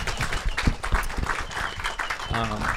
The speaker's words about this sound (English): Excellent. I want to give a round of applause.